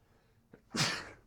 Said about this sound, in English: I 100% sneezed.